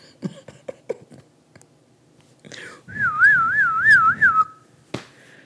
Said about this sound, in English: The alarm just went off.